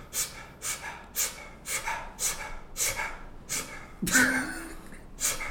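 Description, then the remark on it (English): A voice imitates a man sitting in a chair, breathing weirdly and grabbing his neck: rapid, ragged gasping breaths, about a dozen sharp intakes in a steady rhythm, ending with a strained, choked vocal sound. Fairly loud, with no words spoken. “He sit in the chair, starts breathing all weird, grabbing his neck.”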